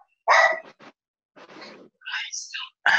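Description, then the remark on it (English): Dogs bark in a few sharp, separated bursts, with a higher whining yelp in between, moderately loud, with no talking over them. “I'm sorry, I told on my dogs are barking.”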